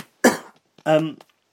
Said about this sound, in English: Sorry, I need to cough.